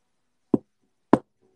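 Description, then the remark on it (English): Two firm knuckle knocks on a wooden door, evenly spaced about half a second apart, fairly loud with quiet in between. “He knocked on Mr. Happy's door. Oh, tap, tap, tap.”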